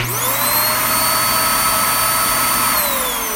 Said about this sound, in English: It's not just nature sounds. I love the whirr of a vacuum cleaner, the sound of cleanliness and productivity.